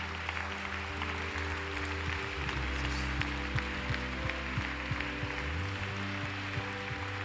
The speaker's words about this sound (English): I feel it's appropriate. Why don't we just clap our hands in total thanksgiving to the Lord.